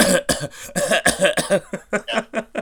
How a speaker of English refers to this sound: Now I'm coughing.